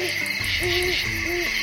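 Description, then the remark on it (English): An owl hoots several times in a steady, mellow rhythm, with a constant high hiss of night insects or ambient noise behind it and no voices. “An owl's wings are designed for stealth flying, but just how the design works is still a bit of a mystery.”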